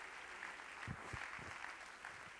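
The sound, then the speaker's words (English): An audience claps their hands to praise God, a dense, steady patter of many overlapping claps at a moderate level, with a few low thumps mixed in and no clear speech. “Let's clap our hands to the Lord and give God praise.”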